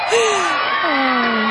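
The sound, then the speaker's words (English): A short, loud burst of crowd cheering, played as a sound effect on the 700th show of eBay Radio: a dense continuous roar of many voices with falling whoops rising above it for about a second and a half. “And the crowd goes wild.”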